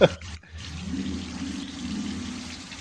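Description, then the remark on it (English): A shower runs with a steady hiss of spraying water, starting after a brief click and pause and continuing evenly without any voices. “Yeah, hit the shower.”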